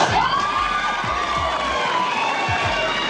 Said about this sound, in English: These women would scream for anything. Just say toenail. Toenail. See?